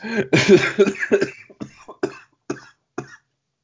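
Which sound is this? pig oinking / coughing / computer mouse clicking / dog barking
coughing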